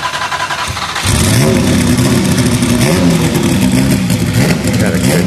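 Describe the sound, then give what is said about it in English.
A powerful turbocharged V6 race car engine with one big turbo, in a car without its body work, roars to life about a second in as it is fired up, then revs loudly and steadily up and down, dominant, with faint background voices beneath it. “A nice V6 in there with a turbo. One big turbo.”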